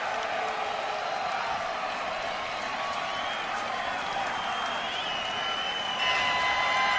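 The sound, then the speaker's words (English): A large stadium crowd of about 10,000 visiting BYU fans in Texas roars steadily as BYU seals a football win, a dense wash of cheering and voices with thin whistles cutting through, swelling louder near the end. “Really quick, just to give you some crowd noise, this BYU crowd, I tell you, I mean, I've never heard anything like this from a visiting team, only 10,000 fans in this stadium.”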